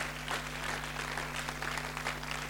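An audience stands and claps together for a speech by the first lady in a dense, sustained burst of applause that holds steady for the whole moment, many hands blending into a continuous crackling roar with no voices standing out.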